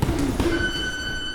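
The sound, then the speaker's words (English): A boxing gym's three-minute round timer buzzer, signalling the young boxers to change activities, sounds a steady, sustained electronic tone with bright harmonics, holding at an even level over low thumping background noise. “That buzzer you hear, by the way, is a 3-minute timer that tells the young boxers in the gym it's time to change activities.”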